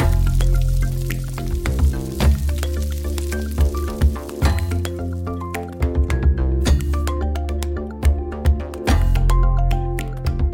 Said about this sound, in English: the velocity at which they snap their claws is so high that you actually get cavitation of the water